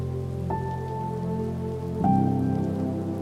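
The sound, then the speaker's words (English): Steady rain patters onto a surface in a continuous, even wash, layered with soft sustained musical tones that shift at two points. No one speaks. “I think that's why I love the rain.”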